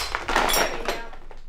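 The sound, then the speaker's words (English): A drinking glass, pushed by hand by a person in protective clothing over a tarp in a living room, gives way under steady pressure, bursting into a sharp, bright crunch with a brief clatter of fragments that quickly fades to quiet. No one speaks. “I'm wearing some protective clothing and shoving the glass at it.”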